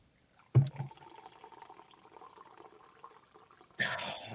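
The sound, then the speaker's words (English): Wine pours from a box into a glass held up to the microphone, a steady trickling stream after a soft knock at the start, ending in a sudden louder splashing rush. “Can you hold the glass up and pour it to the mic?”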